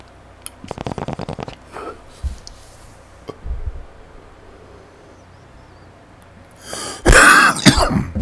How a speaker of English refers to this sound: Barely a cough. Just kidding.